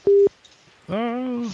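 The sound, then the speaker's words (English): A single short, loud electronic phone tone beeps once, like a keypad press, as a phone number is dialed during a call, followed after a pause by a person's voice speaking over a phone line. “I didn't hang up on you. I was trying to do a phone number.”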